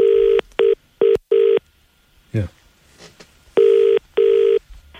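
A loud electronic telephone ring: four short beeping pulses, a brief swooping noise in a pause, then two longer ringing bursts.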